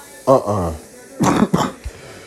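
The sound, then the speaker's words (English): A brief voiced groan gives way to two harsh coughs over the microphone in quick succession, followed by a soft low thump before it goes quiet. “I promised y'all I wasn't gonna cough on the episode, bro.”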